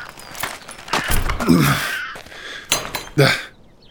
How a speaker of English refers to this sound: It's a bit stuck. The door is rusted shut.